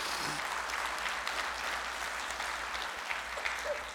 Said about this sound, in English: Applaud our train team at the fishing derby. Everybody give the train team a round of applause.